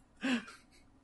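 One deep, rasping breath from Ghidorah, a giant monster, with a low growling tone at its core, followed by a fainter, airy trailing exhale that fades out.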